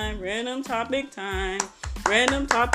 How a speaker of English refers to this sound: Random topic time. I'm sorry for the soul clap, but let's get into it.